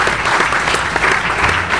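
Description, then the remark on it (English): A crowd claps steadily in dense, continuous applause for the man who runs San Francisco Fleet Week, loud and even throughout with no pauses and no voices standing out. “So if you see the success of San Francisco Fleet Week, give that man a round of applause for his efforts to do so.”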